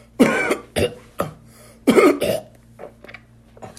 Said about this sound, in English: And I'm sorry for all the coughing and all that stuff. I am going through my own, you know, thing here.